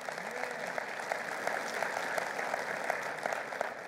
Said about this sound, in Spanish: De un aplauso al Señor si Él está hablando de alguna manera.